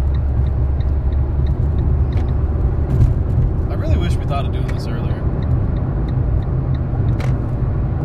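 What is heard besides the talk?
road traffic passing by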